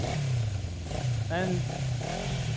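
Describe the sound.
A voice imitates the engine of a newly bought motorbike rolling up to the station, a continuous throaty drone that rises into a brief revving whine and falls back over a couple of seconds.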